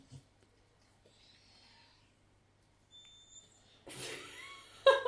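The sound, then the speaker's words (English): A person pretending to be a large dog imitates a dog's squeaky whines: a few thin, high-pitched squeaks and breathy sounds, quiet at first, then a louder, rougher burst of squealing near the end. “The squeaks you make. You're a large dog. You can't make those noises.”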